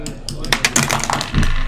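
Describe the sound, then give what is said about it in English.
Two dice clatter across a hard tabletop during a perception check in a tabletop role-playing game, a quick burst of sharp clicks and taps, tumbling irregularly before settling, with a faint murmur of voices underneath. “Why are you rolling two dice?”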